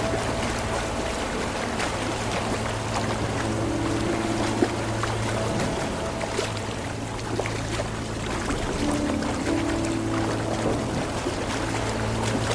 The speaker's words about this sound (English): 5 more minutes and we hit a flooded street. The water looked to be roughly 2 feet deep. I drove the tractor through slowly, but not too slowly.